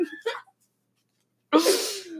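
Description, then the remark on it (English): A voice imitates a sneeze: a short breathy intake, a pause of silence, then a loud, forceful burst of noisy air trailing off. “We got a firefighter who sneezes on you.”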